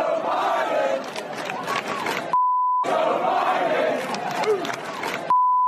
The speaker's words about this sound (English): As you can hear the chants from the crowd, let's go, Brandon.